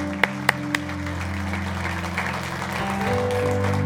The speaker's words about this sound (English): Come on, give the Lord a hand clap, church. God bless you.